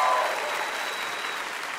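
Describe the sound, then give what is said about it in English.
A hostile crowd reaction sound effect: a loud, dense wash of many voices and clatter, sustained steadily for about two seconds before easing off slightly at the end. “I felt the crowd got a little violent there”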